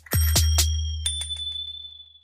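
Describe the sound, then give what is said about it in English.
A bicycle bell rings three quick, bright strikes, then several lighter taps, its high metallic tone lingering and slowly fading, with a low steady hum underneath. “Ringing my bike bell.”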